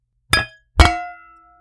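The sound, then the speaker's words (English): Two glasses of cabernet wine clink together twice in quick succession in a toast, bright; the second touch is louder and leaves a clear ringing tone that fades over about a second. “So I guess I'm going to give this exactly zero time to breathe because I want wine now. So cheers.”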